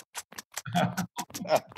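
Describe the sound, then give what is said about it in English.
A voice imitates a ticking stopwatch with a quick series of sharp tongue clicks at a fairly steady pace, mixed with a couple of short, low voiced mouth sounds. “Okay, let me throw in a little tongue-ticking.”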